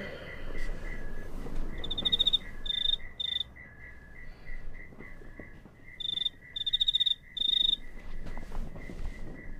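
Crickets chirp steadily in short repeated pulses, with a higher, brighter trill bursting in at intervals, all over a quiet nighttime background with no voices.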